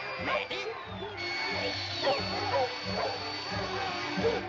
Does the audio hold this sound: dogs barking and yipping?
yes